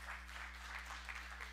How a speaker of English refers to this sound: Amen. Give him a hand clap.